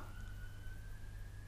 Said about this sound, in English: Sorry, sirens going past. They're not after me, I promise.